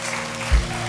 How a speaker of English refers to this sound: I feel like myself personally, look how many people are being baptized. How cool is this? You should clap.